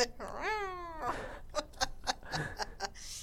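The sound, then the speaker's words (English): A voice imitates a cat's meow in one drawn-out, rising-then-falling mew, followed by a string of short, breathy bursts like giggling, fairly loud. “Yeah, and then cat tack. Oh, my God. I loved their noises.”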